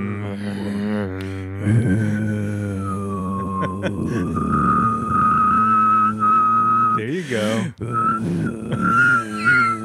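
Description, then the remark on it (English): A person whistles a steady high tone while a low, raspy growl drones underneath, both held together for several seconds with brief pauses; a short spoken remark comes near the start. “Okay, once you like calm down a bit and just growled and whistled at the same time.”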